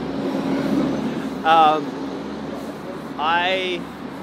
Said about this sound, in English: Hey, garbage truck.